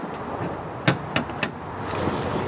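A metal door knocker on a big red door at the top of a flight of stairs strikes three times in quick succession, each sharp bang ringing briefly with a bright metallic tone, over a soft background hiss.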